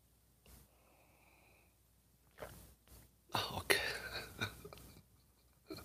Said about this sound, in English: Fill it with your favorite liquid. I like coffee. Join me now for the unparalleled pleasure. It's the dopamine hit of the day. You know it's going to be good. It's called the simultaneous sip. And it's going to happen now. Go.